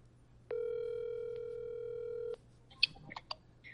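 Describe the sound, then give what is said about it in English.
A steady telephone dial tone hums for about two seconds, then stops, followed by a few quick, irregular keypad beeps as a number is dialed to make a phone call. It sounds clear, with no talking. “Let me make this phone call.”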